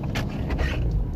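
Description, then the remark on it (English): A steady, low rumbling drone fills the space, like road and engine noise heard from inside a moving car, constant and fairly loud with faint higher hiss and creaks. “Today, yeah, first car ride review of 2023.”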